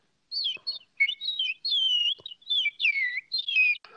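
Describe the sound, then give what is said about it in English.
A voice imitates birds at a distance as heard through a window from a second story: a quick run of whistled chirps and tweets, about a dozen short warbling phrases over four seconds, with no talking. “Yes, I can do an impression of birds at a distance as heard through a window from a second story.”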